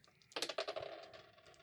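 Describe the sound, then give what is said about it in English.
A rapid cluster of hard clicks and clatters starts suddenly, then tumbles and rattles to a stop over about a second as dice are rolled and bounce across a tabletop. “The same roll. Your dice have a memory.”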